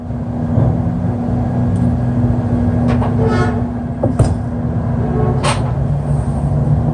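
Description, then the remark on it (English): Heavy garbage trucks arriving outside a warehouse at night rumble and idle steadily, their low engine drone constant throughout, punctuated by a few short bursts of hissing air brakes. No one speaks. “It looks like all the rubbish trucks are arriving and having a meeting outside the warehouse tonight.”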